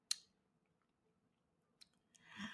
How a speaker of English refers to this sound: Literally chewing it. Literally, it is being chewed right now.